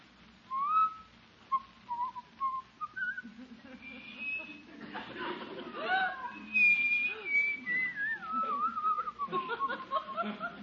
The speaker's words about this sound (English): You just going to sit there and whistle all night? Whistle? Oh, no, no, no.